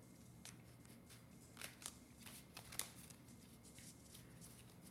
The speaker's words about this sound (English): I was shuffling as I am shuffling now. Although these cards are harder to slide into each other. My shuffling is mostly cutting the deck.